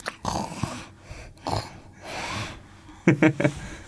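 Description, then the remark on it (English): A person imitates snoring: a few rasping, drawn-out inhales and breaths, ending in a quick burst of throaty snorts. “I can do snoring noses.”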